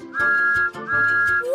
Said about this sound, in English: Whistle!